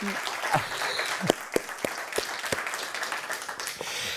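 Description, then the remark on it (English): A small group in a central London studio applauds warmly and steadily, the clapping dense and even at a moderate level, with a few sharper individual claps popping out now and then. “Warm applause here in our central London studio.”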